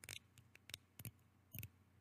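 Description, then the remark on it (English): Several crisp mechanical clicks from the small thumb dial of an adjustable safety razor being turned by thumb to change its setting. The clicks are fairly quiet and come in uneven bursts with brief pauses between them, with no talking. “Okay, so you just use your thumb right here, and you can just hear it. You can hear it clicking.”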